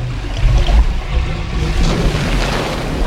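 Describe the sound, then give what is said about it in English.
Water drains away in a steady, loud rush, with a deep rumbling low end and a churning hiss that continues unbroken throughout, with no voices. “Look what you did. The water's going down.”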